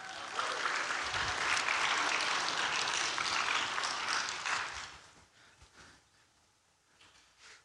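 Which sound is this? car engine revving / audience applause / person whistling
audience applause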